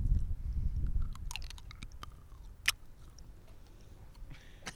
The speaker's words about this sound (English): You gotta get the sound of the jelly bean crunching between my teeth.